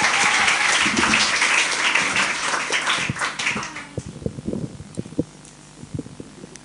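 A crowd applauds loudly, dense clapping that thins out after a few seconds into scattered individual claps before fading.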